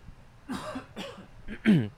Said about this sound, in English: And I have a little scratchy thing in my throat, so let me cough that out. One second.